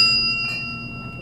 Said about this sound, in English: So this is called Casilla Azul. This is one of Rose's best tequilas. This is a Reposado. And the best thing about this is a bell on top. So every time someone orders a tequila, you celebrate it with a bell.